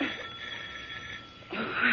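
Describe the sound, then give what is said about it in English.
A doorbell rings with a steady, harsh electric buzz that runs unbroken for about two seconds and grows louder and brighter near the end. No one speaks. “You can't answer the doorbell, can you, Henry?”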